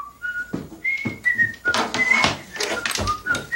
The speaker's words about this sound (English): Oh, hi, Vern. You know, I just got through watching the Andy Griffith Show on WDBJ7. And he's whistling the theme also.